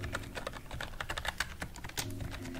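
Rapid, uneven typing on a computer keyboard at an autumn lodge check-in: a steady stream of crisp, clicky keystrokes of moderate loudness over a soft, low background hum, with no one speaking.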